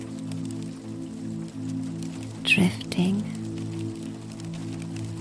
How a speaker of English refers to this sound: You listen to the drops of rain as they fall. And then focus on the soft, quiet pauses between drops. You are soothed by the rain